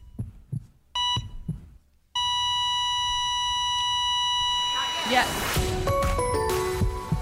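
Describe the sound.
A few soft heartbeat thumps and short electronic monitor beeps, then a long steady flatline-style tone that holds to the end while people talk and react over it.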